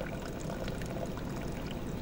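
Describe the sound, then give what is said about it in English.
Egg coffee, made by simmering coffee and egg and adding cold water, pours through a sieve in a steady stream: a continuous splashing trickle with no talking, lasting a couple of seconds. “Pour in a cup of cold water and then let it sit for 10 minutes. And then you just sieve it out.”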